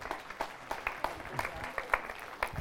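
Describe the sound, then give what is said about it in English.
An audience applauds steadily, dense overlapping claps forming a bright, crackling wash with sharper individual claps popping out. Some background voices may be mixed in. “If you could put them, give a round of applause.”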